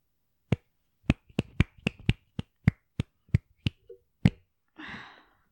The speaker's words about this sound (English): I'm proud of your snapping ability.